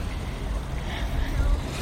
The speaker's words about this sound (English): I love how the ocean responds. It gets a little more assertive. The sound.